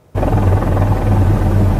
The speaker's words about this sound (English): It's a low-flying helicopter getting pretty close to the trees next to a highway.